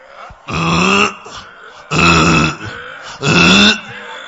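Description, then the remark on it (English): A person imitates a frog with three loud, low, guttural croaks, each about half a second long and evenly spaced, with short silent gaps between them and no other talking. “The whole music, the voice, the costly instruments all sounded like frog creaking in comparison to the heavenly choir.”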